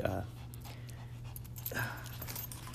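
A small dog pants steadily, quick breathy huffs running through the whole moment over a low background hum, with a couple of louder bursts of breath.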